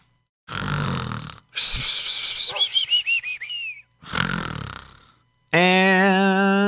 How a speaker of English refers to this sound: And that's a snore, right? That's a snore and a half.